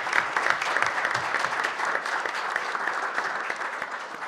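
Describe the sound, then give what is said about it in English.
An audience applauds a panel in a steady round of applause, dense overlapping hand claps forming a bright, even wash of sound that holds at a constant loudness throughout. “If we can give them a round of applause for coming here.”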